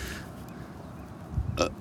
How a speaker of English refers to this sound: Burp noises. Yep. Any sorry for that? No apologies.